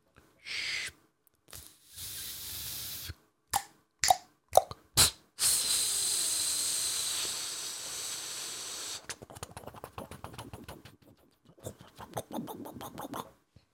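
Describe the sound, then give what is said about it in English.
A voice imitates water boiling on a gas stove: a few sharp clicks and puffs like the igniter clicker lighting the gas flame, then a long steady hiss, followed by rapid bubbling pops, fairly loud. “I was boiling water on an oven. So I was turning on the gas.”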